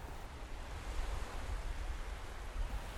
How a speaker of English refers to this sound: The water slaps gently on the shore, and our feet part the coarse sand rudely.